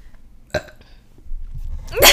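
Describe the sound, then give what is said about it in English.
A burp rings out, with a short guttural burst early on and a louder, drawn-out belch near the end; no one speaks. “Girls do fart and burp.”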